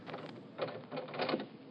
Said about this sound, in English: Door's open.